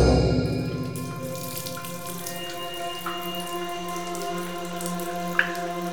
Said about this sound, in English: Egraine heard the soft dripping of water on granite